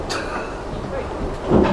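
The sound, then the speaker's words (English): A door is rattled and jiggled as someone struggles to open it, with scraping, clunking handling noise that builds to a louder thump near the end. Muffled voices sit in the background. “It's a tricky door, I know.”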